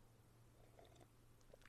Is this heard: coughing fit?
no